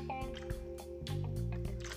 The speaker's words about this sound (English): Hold on, let me sip on some of this.